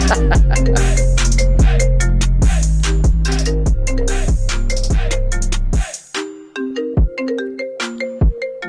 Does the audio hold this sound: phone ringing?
yes